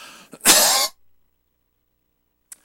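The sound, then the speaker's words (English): A single harsh cough bursts out after a brief throaty lead-in, then silence follows, broken only by a faint short breath near the end. “Excuse me, I hate to, but I got to cough.”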